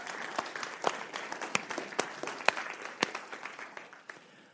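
An audience applauds, a dense patter of many hands clapping steadily with a few sharper claps standing out, holding fairly even before tapering off slightly at the end.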